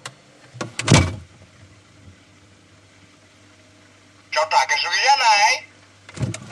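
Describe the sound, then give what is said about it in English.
A refrigerator door shuts with a dull thud, followed after a pause by a burst of high, warbling electronic chatter from a Fridgezoo toy that warns when the fridge door is left open too long, and another soft knock at the end. “Shut up, I've closed the door already.”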